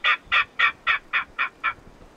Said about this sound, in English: Yeah, this is of a king rail, which is pretty rare in the Midwest. This is the king rail call.